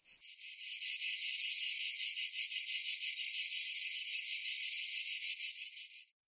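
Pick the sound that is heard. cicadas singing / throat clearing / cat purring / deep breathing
cicadas singing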